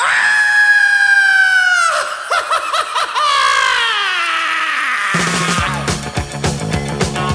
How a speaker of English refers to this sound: I'm going to scream and scream again.